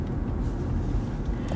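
Steady low rumble of road noise inside a moving car, a constant droning hum with no breaks and no voices, moderately loud throughout.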